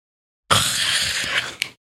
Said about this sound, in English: I stretch and do a big yawn to show all my teeth.